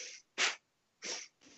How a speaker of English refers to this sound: And then the breath is through the nose and it's in and out as forcefully as if you were blowing out a birthday candle with the breath coming through your lips. So it's a, but you're going to take that through the nose.